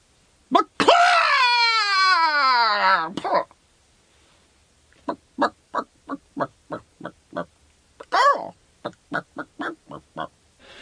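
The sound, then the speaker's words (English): Actor Alan Tudyk, in a recording for a film, imitates a chicken: a long, strained squawk that slides downward, a brief pause, then a quick string of short, clipped clucks broken by one more squawk. “I just love that moment of just chicken noises.”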